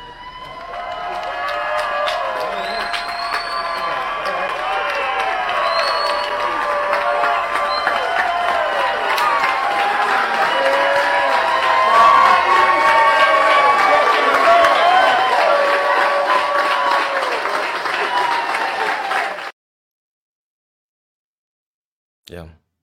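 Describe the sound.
A large crowd in the VMAC cheers and applauds loudly for about twenty seconds, welcoming MacDonald as the new head coach, many voices shouting and whooping over steady clapping, before the noise cuts off abruptly into silence.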